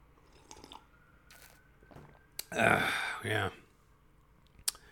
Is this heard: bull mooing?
no